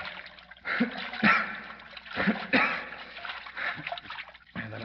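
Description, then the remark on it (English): Water splashes and sloshes in repeated bursts, fairly loud, as someone in the water holds a limp person's head above the surface, with brief low murmurs mixed in. “I'll keep his head up above water.”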